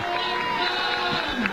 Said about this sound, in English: Wrexham are working right to left in the first half. And we're about to get things going. Good noise from the crowd.